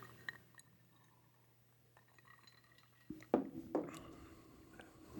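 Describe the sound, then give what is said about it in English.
Glasses of Texas whiskey on ice clink together in a toast, with small glassy ticks of ice and liquid, a few bright clinks, then louder shuffling and handling noise toward the end. “We're drinking Texas whiskey for you. and we're drinking it on ice. Oh, God. So, yeah. Cheers.”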